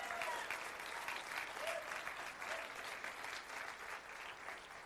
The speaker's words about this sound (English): If you believe that this morning, give the Lord a hand clap and shout of praise today.